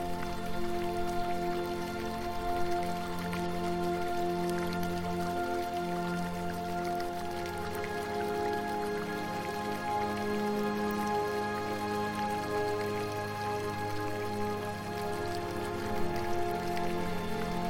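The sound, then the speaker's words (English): Steady, continuous trickling of a garden fountain in a quiet corner of a garden, splashing evenly at a moderate level throughout, with sustained soft tones humming underneath and no voices. “And in a quiet corner, you can hear a fountain singing.”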